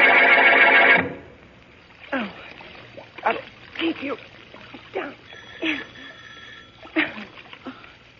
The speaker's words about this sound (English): As we return to our story, water is still running into the tub.